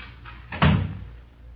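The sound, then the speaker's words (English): A door swings shut with a single firm thud, preceded by a faint creak and followed by a short fading resonance in otherwise quiet surroundings. “But close that door, please.”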